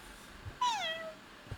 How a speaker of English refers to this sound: A kitty cat?